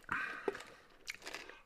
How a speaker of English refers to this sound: I gotta swallow it like a pill. I'm still chewing.